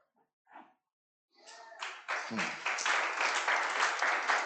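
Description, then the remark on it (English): A brief spoken phrase, then an audience breaks into applause at a remark that there is a spiritual element to things, quickly swelling into dense, steady clapping from many hands, staying loud until the end. “Why are you clapping that there's a spiritual?”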